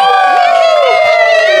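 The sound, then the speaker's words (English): A crowd erupts in loud, excited cheering as Wolf Beamer, the werewolf detective, steps onto the stage. Many voices join in a sustained, energetic, whooping roar that carries steadily without pause. “The crowd erupted with excitement as a man that lived up to the title stepped onto the stage.”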